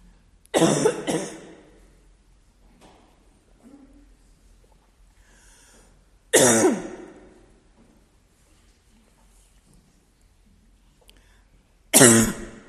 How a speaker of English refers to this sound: Can we imagine having a cough like that?